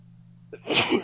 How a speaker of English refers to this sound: Oh my God. Bless you. I didn't hit the mute button in time. Sorry.